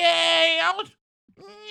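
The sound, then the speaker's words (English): Someone imitates a cat with two loud meows: a long, nasal first one that bends downward at the end, then a brief pause before a second begins. “Are you a cat now?”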